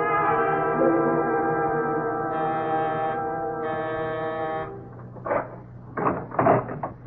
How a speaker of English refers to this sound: I'm sorry to ring your bell this late. I just moved into the building.